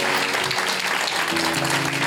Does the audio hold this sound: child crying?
no